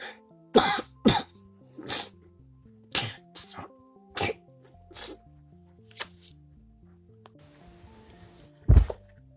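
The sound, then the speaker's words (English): A person coughs repeatedly in sharp, forceful bursts, some close together and some spaced apart, ending with one especially loud cough, over a faint low background. “I can't hear you over that coughing sound because it kicked you in your nads.”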